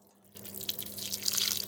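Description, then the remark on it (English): After a brief moment of quiet, Pure Russian Rainwater is poured steadily over a raw turkey, inside and outside of the bird, picked up by a microphone right on the turkey: a continuous splashing, trickling rush that holds through to the end without any voices. “You just want to pour the Pure Russian Rainwater, preferably inside and outside of your bird.”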